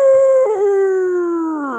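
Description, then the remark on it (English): A single long, loud howl from a wolf holds a steady, mournful pitch and then slowly sinks lower as it fades toward the end, with no voices around it. “And so that wolf stretches again and howls.”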